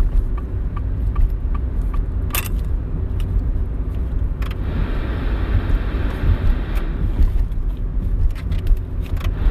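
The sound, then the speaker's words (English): Steady low rumble of a car driving along a road through a town late at night, heard from inside the cabin, with occasional light clicks and rattles over the continuous engine and tire drone. “Of course, another car behind me running up on me with big lights.”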